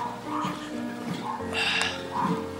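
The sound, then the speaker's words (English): A dog barks a few times, short bright yelps mixed in with the murmur of people talking, outdoors on a side road on a sunny day, in the shade. “So we're going off a side road now. Dogs barking, people talking.”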